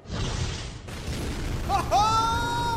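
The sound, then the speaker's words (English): An explosion rips through the Winter Palace of the Shadowfell as a portal collapses. A dense, rumbling blast roars with heavy low-end noise, and partway through a high, sustained ringing tone sweeps in and lingers over the continuing rumble. “Somewhere in the Shadowfell, an explosion.”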